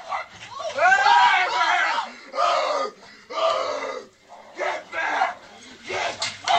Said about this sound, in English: You're going to hear screaming, and that's actually the man screaming at the dog, like growling at the bear.